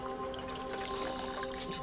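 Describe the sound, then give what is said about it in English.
Water drips and trickles steadily from a drinking fountain, small splashy drops falling in quick succession over a low, constant hum, moderately quiet, with no talking. “I ran into another Swedish dude by the water fountain.”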